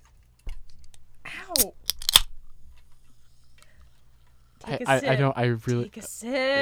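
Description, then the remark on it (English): A sharp metallic click and short fizzy hiss as a can of LaCroix sparkling water is cracked open, followed after a pause by a person talking. “All right, I'll open the LaCroix.”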